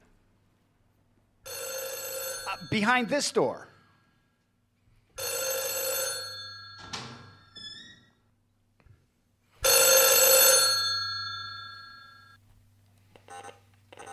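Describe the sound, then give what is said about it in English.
An old-fashioned telephone bell rings behind a door in three strong bursts separated by pauses of a couple of seconds, with a person briefly speaking between the rings. “There's a phone ringing.”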